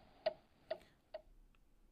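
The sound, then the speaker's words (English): A ticking countdown timer during a quiz question: three crisp, evenly spaced ticks about half a second apart, clear, followed by a faint fourth tick and quiet. No one speaks. “The clock is out of order. Giving it some more time there.”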